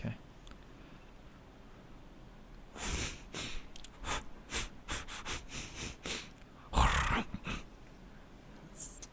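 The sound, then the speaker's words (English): A person imitates a wild boar with a series of harsh, breathy snorts and sniffs in irregular bursts, with one especially loud, forceful snort near the end. “A wild boar. Is that a That's it.”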